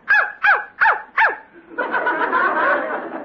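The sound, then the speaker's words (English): A dog named Rover barks four times in a quick, evenly spaced run, each bark loud, answering the question of what 2 minus 2 is. A sustained wash of noisy sound follows. “When he don't bark, that means zero.”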